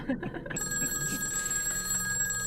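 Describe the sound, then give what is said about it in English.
An old-style landline telephone rings with a steady, sustained electric bell trill, clear, continuing to the end after a brief muffled rustle at the start. “You walk over to the other side of the room, and you unplug it, and it immediately stops ringing.”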